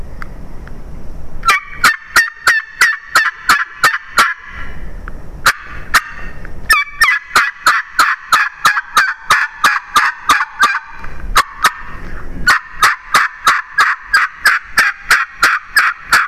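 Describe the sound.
A series of rhythmic turkey yelps made on a tube call, loud, starting high-pitched and then dropping to deeper yelps, with brief pauses between the runs; the pitch is changed only by the angle of the lip on the call, not by air or pressure.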